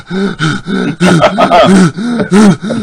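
Rapid, rhythmic heavy breathing with voiced groans on each breath from a man on a song recording, about a dozen loud gasping bursts in quick succession, with no words spoken.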